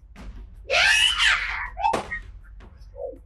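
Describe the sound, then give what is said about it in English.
A voice lets out a loud, shrill screech in imitation of a creature in agony, wavering for about a second before cutting off, followed by a sharp knock. “And as it gets kind of caged into this wall of light, it screeches in absolute terror and agony.”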